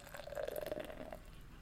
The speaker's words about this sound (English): Oh my god, the head on this. Crazy. Oh my god, it's huge. The head is massive. This is an awful pour. I'm not used to pouring a lager. I'm about to pour it incredibly slowly.